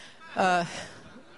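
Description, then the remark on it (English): A man clears his throat once, a short voiced rasp lasting about a third of a second that rises abruptly and fades, followed by quiet. “I heard him over there clearing his throat.”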